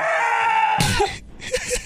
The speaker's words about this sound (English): I'm going to say a goat again. That is correct. That was also a goat.